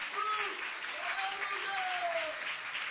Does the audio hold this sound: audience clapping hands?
yes